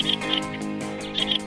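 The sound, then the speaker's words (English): Fieldfare calls: short, high chirping notes from this thrush family member arriving in two quick pairs, clearly audible over a steady, low humming background tone with no talking. “One of those stories today will concern the surprise visit there of a thrush family member called the fieldfare.”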